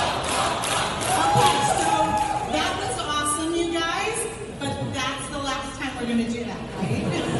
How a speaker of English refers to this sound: This is cell phone footage of the crowd you'll hear at first chanting Trump when he wasn't even there.